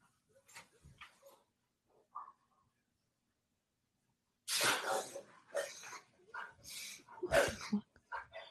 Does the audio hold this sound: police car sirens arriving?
no